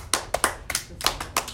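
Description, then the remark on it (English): Children clapping their hands up in the air as instructed: a quick, uneven run of about seven or eight sharp claps, slightly ragged as if from several pairs of hands, with no talking. “Clap your hands. Can you clap your hands in the sky?”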